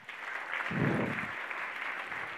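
A room full of people claps together, a dense, steady patter of hands that swells briefly in the middle and holds at a moderate level without any talking.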